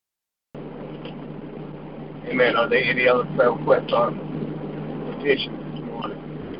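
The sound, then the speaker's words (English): Steady road noise and a low engine hum fill a car cabin from start to finish as it drives through rush hour traffic in the rain in Richmond, with a muffled voice talking over the drone partway through. “But I'm trying to make it through Richmond and rush hour traffic is raining, so bear with me”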